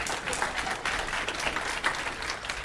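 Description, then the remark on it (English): Steady applause from an audience for the principal of TO High School, a dense wash of many hands clapping at an even loudness throughout, with no voices standing out. “You rock, so I'm going to clap for you.”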